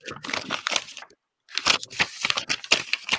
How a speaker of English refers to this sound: All this paper shuffling.